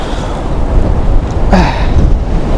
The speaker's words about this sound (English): Oh my goodness, it's very windy.